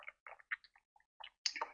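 A host takes small sips of water right at the microphone, a quick series of soft wet slurps and swallows with brief pauses between them, and no talking.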